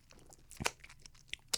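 Crunchy chewing on Parmesan garlic chicken wings: a few sharp, crackling bites with one loud crunch early on and another near the end, quieter wet chewing between, no talking.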